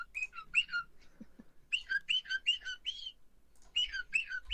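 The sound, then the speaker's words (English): A parrot whistles in repeated bursts of sliding, warbling notes, three clustered phrases with short pauses between them, clear with no talking. “Is that a parrot?”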